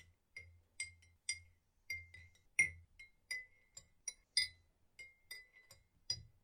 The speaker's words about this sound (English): Take your spoon and gently give the leaves a swirl as they steep for at least, I would say, 5 minutes within the water.